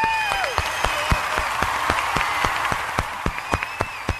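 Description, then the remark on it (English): Applause for Joe Murray, who turned his garage into a Christmas display called the Little North Pole: sharp, crisp claps in a steady, even rhythm, about four a second, over a faint humming, tonal background, holding a consistent beat for several seconds. “So without further ado, a round of applause for Joe Murray!”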